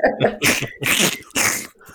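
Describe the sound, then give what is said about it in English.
Three quick, forceful sniffs in a row, fairly loud, each a short breathy burst with brief pauses between. “We'll just put a series of sniffs and then yes!”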